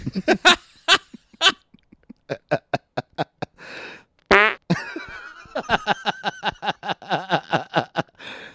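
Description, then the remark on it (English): A string of loud fart sound effects plays from a soundboard on an old computer with no talking: a few sputtering blasts, then a rapid run of short pops, one long buzzy squeal, and a final quick rattling series. “Yeah, that's our old friends Perfect Fart and Anxious Fart.”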